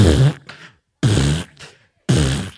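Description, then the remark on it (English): A voice imitates a car stereo's rattling bass with three loud, buzzy, sputtering bursts, each followed by a shorter, softer rattle, repeated in a steady rhythm with brief silences between. “That's how your car sounds. Your bass is horrible. It's rattling.”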